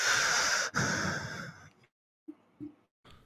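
Loud heavy breathing: a long, noisy exhale with a sharp break, trailing off into silence, followed by a few short, rough breaths.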